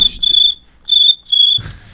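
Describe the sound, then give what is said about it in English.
A voice imitates cricket chirping: three shrill, steady high-pitched trills with short gaps between them, followed by a brief rumble of low noise at the end. “Oh, that was a cricket.”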